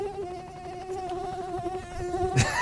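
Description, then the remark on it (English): A steady, high-pitched mosquito buzz whines continuously, its thin nasal drone holding a constant pitch, ending in a brief burst of noise at the very end. No one speaks. “when you put the Skeeter on the helicopter, right, makes that thing go turbo blast”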